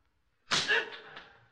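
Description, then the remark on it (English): A sharp, loud whip lash cracks out after a moment of silence as Japanese soldiers beat a man, its swishing tail fading over a second, with a fainter second snap just behind it. “For I am being beaten, too, by Japanese soldiers. These men holding the whips and blackjacks in their hands have been cuffed and beaten themselves.”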